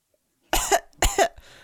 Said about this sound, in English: probably don't need to say this, but that isn't an open invitation for you to cough without covering your mouth.